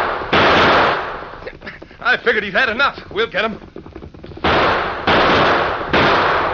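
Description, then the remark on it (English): Loud gunshots ring out in a Lone Ranger shootout as outlaws fire at the masked rider: one sharp blast, then a man's voice speaks, followed by three heavy shots fired in quick succession. “Shoot the horse. I'll get him. No, my arm. He got me in the arm.”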